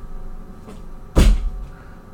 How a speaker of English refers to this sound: Knock twice if you can only knock. That's awkward. Can you knock long?